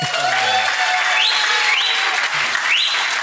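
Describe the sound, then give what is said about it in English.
Steady, dense applause from a large audience at a church gathering as a speaker is called up, a continuous wash of many hands clapping with faint crowd murmur and a few tonal background sounds underneath. “And we want to have a culture of honor, so it is appropriate to clap.”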